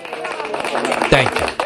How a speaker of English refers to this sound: Thank you. I love electronic clapping.